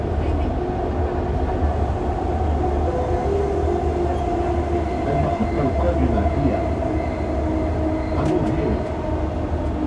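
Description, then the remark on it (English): Steady, loud rumble of a metro train in motion, bound for Creek with Abu Hail as the next station, a continuous low roar with faint rattling and a few brief high squeaks, heard from inside the carriage with no clear talking. “Metro ride experience”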